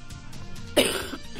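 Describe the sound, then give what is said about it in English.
A single sharp cough bursts out partway through, fairly loud, then trails off into quiet with no talking. “That cough was fascinating.”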